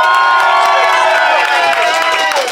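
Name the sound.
audience applauding and cheering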